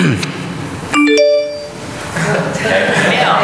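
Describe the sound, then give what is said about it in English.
A bright two-note phone notification ding rings out once, clear, ringing briefly before fading, with a low murmur of voices before and after it. “Yeah, check your phone, right.”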